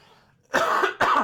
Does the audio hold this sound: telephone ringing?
no